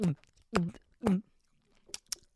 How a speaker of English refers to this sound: You can so hear that. Is it so loud? Yeah, yeah. Just crunchy cracker or whatever the fuck it is.